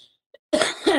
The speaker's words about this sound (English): We got the cough. We got the cough.